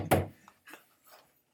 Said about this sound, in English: Hey. That sounded like a police knock. So after that brief interruption, let's go back to the episode.